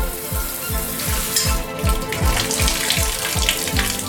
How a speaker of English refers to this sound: We can pour it out of a faucet.